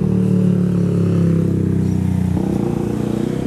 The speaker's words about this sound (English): Excuse me, there's a motorbike.